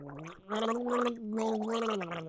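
Someone gargles water while voicing the name of a music artist for others to guess, a pitched hum bubbling through the liquid in two sustained, gurgling stretches separated by a brief pause.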